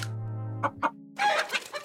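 A chicken clucks in a quick run of short, sharp calls, a couple of separate clucks followed by a busier flurry, clear with no one talking.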